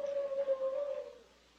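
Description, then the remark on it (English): A single drawn-out howl from a collie in Pompton Lake, New Jersey, a steady moaning tone that holds for about a second and then trails away, heard alone and fairly faint. “Say, ain't that a dog howling?”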